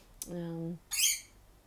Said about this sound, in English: Ah, I see you are starting to be unhappy with me engaging in technology. This is the beginning. It's only the beginning, but my bird's already starting to complain.